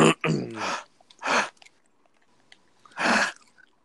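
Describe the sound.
Someone chews right up against the microphone, four loud, crunchy, moist bursts spaced irregularly with quiet gaps between them, and a brief murmur of voice near the start.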